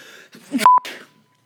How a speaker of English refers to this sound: Pause. Have to sneeze. It's not going to come.